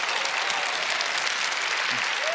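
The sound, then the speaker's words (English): A large Calvary Church audience applauds steadily after a pastor's story, a dense continuous wash of clapping at even loudness, with a faint voice briefly rising above it near the end. “Come on, give it up, Calvary Church.”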